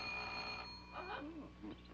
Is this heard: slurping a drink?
no